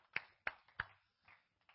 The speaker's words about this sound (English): Clap our hands unto the Lord. You may be seated.